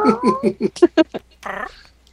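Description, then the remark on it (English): A voice imitates a cat meowing: a quick run of short, chirpy mews followed by one longer, drawn-out meow that trails off into quiet. “Meow. Meow.”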